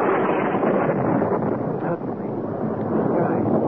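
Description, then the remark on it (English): A mighty crash of thunder, with a jagged streak of lightning across the darkness: a loud, sustained rumbling roar that fills the whole stretch, broad and steady with a brief dip midway, and no voices. “Jagged streak of lightning cut sharply across the darkness, and a mighty crash of thunder shook the air around me.”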